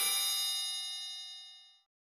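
A single bright, metallic phone ringtone chime strikes once and rings out clearly on its own, its shimmering tone fading away smoothly over about two seconds before cutting to silence.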